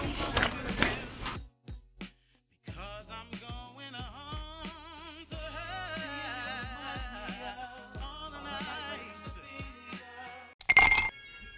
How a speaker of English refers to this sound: Grab your motherfucking ice. Grab your lemon wedge. Clink, clink, clink, clink. There you go. She got the sounds.